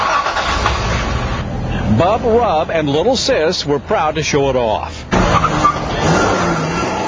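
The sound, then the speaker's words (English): A car engine in Oakland roars through an installed noisemaker exhaust, loud and rumbling throughout, dipping briefly while a person speaks over it in the middle, then surging back up strongly at the end. “Some Oakland residents will complain about the noisemakers Tuesday night at the city council meeting.”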